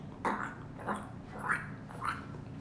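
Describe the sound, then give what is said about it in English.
A voice imitates a cartoon duck, sounding almost like Donald Duck, with four short, gargly, raspy squawks in a steady rhythm, moderately loud, with no actual words. “That's how people, that almost sound like Donald Duck.”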